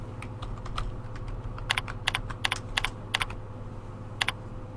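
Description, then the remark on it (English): Keys clatter on a computer keyboard in quick, irregular bursts of typing as content is typed into a SmartArt graphic's bulleted list, moderately loud over a steady low hum, with short pauses between clusters of keystrokes. “Notice your cursor is ready to start working on the first line. Begin typing your content.”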